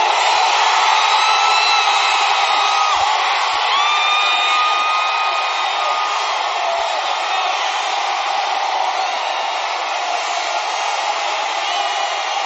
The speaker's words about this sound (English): If your mind is being sparked, let me hear your screaming amen.